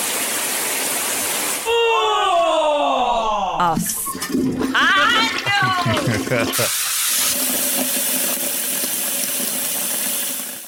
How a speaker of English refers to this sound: Shower. Okay, rain shower.